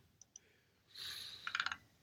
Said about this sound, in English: Type more quietly. It's coming through. We're recording it. It's not typing. I'm using the scroll on the mouse. Your mouse needs oiling, love.